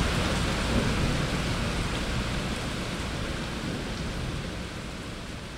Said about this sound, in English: We'll get these. There you go. We'll just get these kind of incredible downpours in this city. When the heat breaks, we'll have really, really hot days, and then suddenly the sky just opens up, and that's what's happening right now.